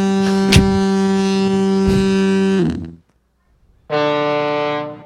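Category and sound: sound effect, foghorn blowing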